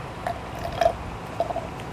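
A few soft sips of liquid, short wet slurping sounds spaced out over a couple of seconds against a low background hum, with no talking.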